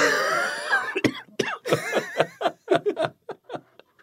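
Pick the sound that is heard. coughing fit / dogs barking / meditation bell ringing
coughing fit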